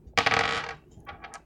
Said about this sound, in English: And that is an 8 on the dice, making that an 11 in real life.